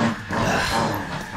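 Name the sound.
dog grunting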